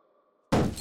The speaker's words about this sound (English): It's not usual for an apron to strike with the force of a bullet, is it, gentlemen? It shattered the marble.